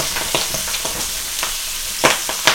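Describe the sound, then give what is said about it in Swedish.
Pork sizzles steadily in a hot steel pan, a constant hiss broken by irregular sharp crackles and pops, with no voices. “Oj, nu steker vi fläsk här.”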